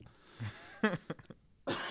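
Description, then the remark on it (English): A harsh coughing fit, loud: a few rough, hacking coughs in quick succession, ending in a longer, raspy burst. No one is speaking. “That was a vicious cough.”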